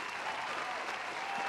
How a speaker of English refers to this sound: I think I'm going to have way too much fun with the soundboard because I only have applause and …